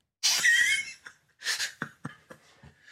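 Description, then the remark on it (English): A harsh cough bursts out during a read, followed after a pause by a second cough and a few short, breathy hacks trailing off. No one speaks. “I keep forgetting to mute during the read. Yeah, come on, man. You got to hit the cough button.”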